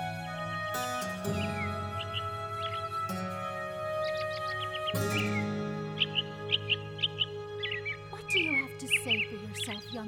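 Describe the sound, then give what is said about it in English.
A nearby robin chirps in sweltering heat, repeated short, bright notes that grow busier toward the end, over a steady low droning background. “The nearby robin's harmonic chirps were hypnotic in the sweltering heat.”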